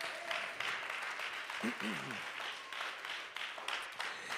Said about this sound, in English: Let's put our hands together and give Jesus a hand clap of praise.